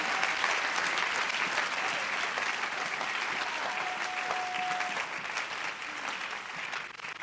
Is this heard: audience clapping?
yes